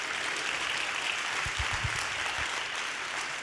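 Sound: audience clapping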